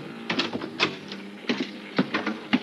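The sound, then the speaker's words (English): Several irregular taps on a ship's cabin door at 10 o'clock at night, with the ship bound for Sydney: soft, hollow raps spaced unevenly over a steady low mechanical hum, with no voices. “At 10 o'clock that night, there was a tap on my cabin door.”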